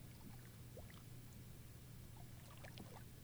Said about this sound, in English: The gently rocking boat, the soft breeze, and the sound of the ocean lull you.